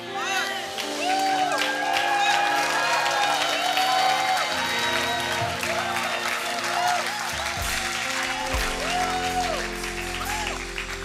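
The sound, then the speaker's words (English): An audience at a church service erupts in loud, sustained shouting and applause, many voices whooping and crying out over steady clapping for about eleven seconds, with pitched vocal wails rising above the roar. “Something happens when you let the shout out.”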